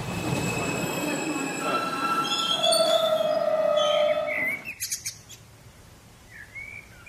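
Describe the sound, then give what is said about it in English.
The Mumbai Express passenger train, travelling from Chennai Central towards Dadar around 1988, rumbles along the rails with long, shrill wheel squeals ringing over the noise, then the rumble drops away to a quieter background with a few faint bird chirps. “I'm 5 years old and small enough to fit into the window of the Mumbai Express, en route to my grandma's house in Dadar from Chennai Central.”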